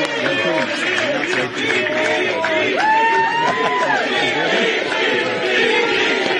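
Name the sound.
crowd chanting and cheering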